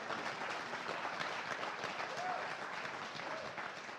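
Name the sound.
audience applause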